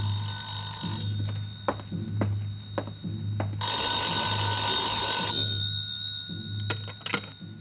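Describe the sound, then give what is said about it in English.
A telephone bell rings in a small side-street hotel: a long, loud, jangling burst, then a shorter ring after a pause, over a steady low hum and a few scattered clicks. No one speaks. “That 6 o'clock plane must have been way out over the Caribbean when the call finally came.”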